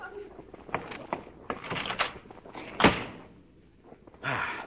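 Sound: door opening and closing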